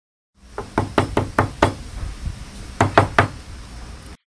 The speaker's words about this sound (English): Friends, during 1986, one night, a headman of the village started knocking the door of an army major.